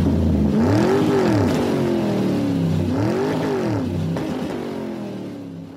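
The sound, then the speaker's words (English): A small car engine revs up in two rising bursts, then pulls away and fades out, with no one speaking. “All hop in this little tiny car and get out of here.”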